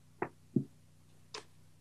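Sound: countdown clock ticking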